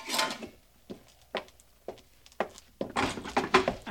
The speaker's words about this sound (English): Open this door for me.